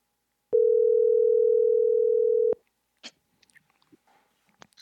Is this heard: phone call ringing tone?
yes